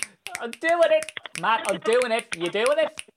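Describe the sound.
Scattered light finger clicks tap out under steady talking, faint and irregular, with a few sharp snaps poking through the voices.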